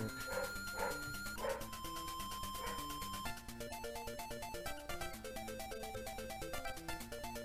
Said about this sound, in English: The dog's not actually in the song. That was in the house. Yeah, just totally ignore that. You never even heard it.